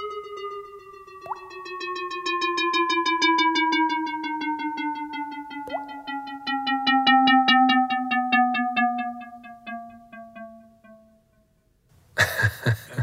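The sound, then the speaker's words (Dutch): Sonified spectrum data from the atmosphere of exoplanet WASP-96b: two brief, bright plonk tones, like a falling water droplet, mark frequencies found in the spectrum of water, over a steady electronic drone that slowly slides downward. A rapid pulsing ticks through the middle, and a harsh burst ends it. “regelmatig hoor je ook een plong, precies een waterdruppel die valt.”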